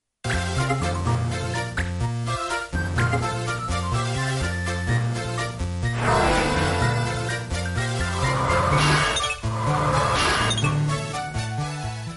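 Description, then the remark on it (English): A dense, loud electronic track from the video game Final Fantasy Tactics Advanced, with a pulsing low bassline, layered with bright chirping blips and menu-style UI sounds that sweep upward. No one speaks. “I heard some Final Fantasy chirps in there and some UI deans.”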